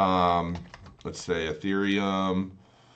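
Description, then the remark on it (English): A short burst of quick, clicky keystrokes on a computer keyboard, interleaved with a person speaking over them, as coins such as Ethereum and BTC are typed into a crypto arbitrage tool. “I mean, you can go in and you can punch in other coins.”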